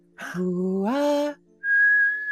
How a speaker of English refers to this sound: I didn't speak any language. I just whistled back at them